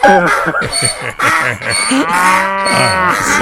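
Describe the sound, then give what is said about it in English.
A person vocally imitates a donkey-cow hybrid animal, letting out a run of loud, drawn-out mooing and braying calls, continuous for a few seconds with no other talk. “and we've got the dong cow in studio here.”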